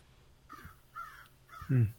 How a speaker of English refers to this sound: Okay, random crow. Oh, sorry, I didn't know you could hear that. Random crow is random.